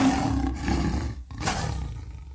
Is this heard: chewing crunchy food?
no